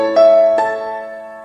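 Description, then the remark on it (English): A Nokia cell phone ringtone: two bright electronic notes struck in quick succession, ringing on and slowly fading, clear, with no voices. “It is a Nokia ringtone, a Nokia cell phone.”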